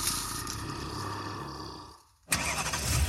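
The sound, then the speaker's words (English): A used car's engine cranks loudly without catching, stops for a brief moment, then the starter grinds again. No one speaks. “If you were in a horror movie, this would be the part where the used car you just bought doesn't start.”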